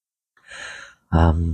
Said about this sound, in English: Sorry, just having another swig of coffee before I start croaking again. Won't make a difference, just croaked anyway, didn't I? Now I've got to clear my throat again.